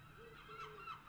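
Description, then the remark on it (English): Geese-like birds honk and call repeatedly outside, a few overlapping harsh cries rising and falling over about a second, with no talking. “I think we should shut the door, because I think the birds are on one today.”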